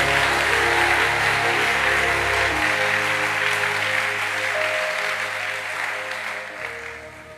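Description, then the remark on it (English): An audience claps loudly and continuously, with raised voices blended into the crowd noise and a sustained keyboard tone underneath, before the applause gradually fades toward the end. “Clap your hands and shout, it is happening.”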